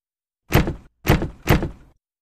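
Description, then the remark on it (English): Three heavy, booming thuds strike a door in quick succession, each a loud, low impact with a short rattling decay before the next blow lands. Nothing else is heard between them. “Something was at my door.”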